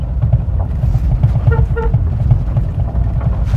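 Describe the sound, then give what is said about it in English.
A car horn gives two quick, mid-pitched beeps to Cody, one right after the other, over a steady low rumble of engine and road noise. “Giving a little beep to Cody.”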